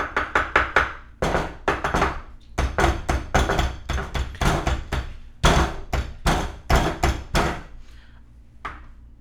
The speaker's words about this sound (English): I think I hear something. Oh, they're at the window now? Oh, now it's at the door. This is really strange. What is he tapping on the glass?